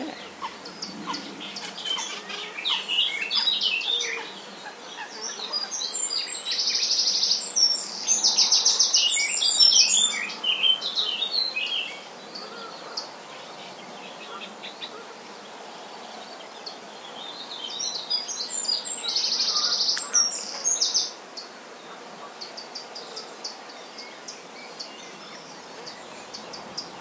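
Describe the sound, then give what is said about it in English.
Canada geese call by a lake in two bursts of honking, with quieter bird chirps and a steady outdoor hush between them. No one speaks. “I can hear Canada geese.”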